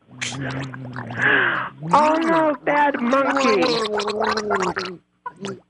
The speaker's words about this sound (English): Now pour the RC Cola right down my throat like a good monkey. Oh, yes.